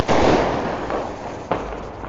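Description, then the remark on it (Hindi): A firecracker set off by someone nearby goes off close by with a loud, sharp bang, followed by a crackling rumble and a second smaller pop about a second later as the echo fades. “Sorry for the डिस्टर्बशन, क्योंकि अभी बगल में किसी ने पटाखा फोड़ा है।”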